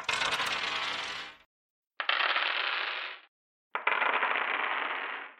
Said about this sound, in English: Maybe I could do the dice rolling sound, but like really low and muffled.